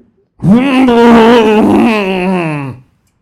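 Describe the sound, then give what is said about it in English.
A voice imitates a sagging piano's groan: one long, loud, wavering moan lasting over two seconds, pitch dipping and wobbling before trailing off. “The piano's sagging. You think that maybe that noise came from the piano?”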